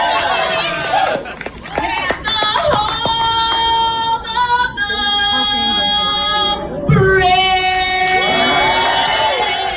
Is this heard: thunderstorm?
no